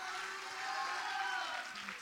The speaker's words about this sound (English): Can somebody clap your hands, and can somebody shout hallelujah?